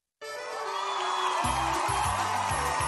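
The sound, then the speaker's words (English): A loud, dense crowd roars and cheers continuously, with whoops rising out of the wash of voices and a low rhythmic thumping joining partway through. “Hear the roar of the crowd, or is that the roar of your stomach?”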